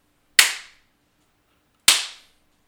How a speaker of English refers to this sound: So watch this, okay? So I'm going to clap twice with this rhythm, okay?